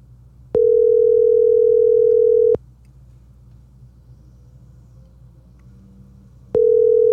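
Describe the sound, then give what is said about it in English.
A phone call to Todd Archer about the Dallas Cowboys ringing on the other end: a steady, mid-pitched electronic tone sounds for about two seconds, falls silent for four, then starts again. No one speaks. “Right now, though, before these lawnmowers attack me again, let's call my boy Todd Archer and see what's up with them Dallas Cowboys.”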